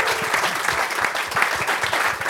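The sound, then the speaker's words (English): An audience at the Cabbage Patch applauds the Cabbage Patch and its staff with dense, steady clapping that keeps up a full, loud texture of overlapping hand claps for a couple of seconds. “Big round of applause to the Cabbage Patch and all the staff here.”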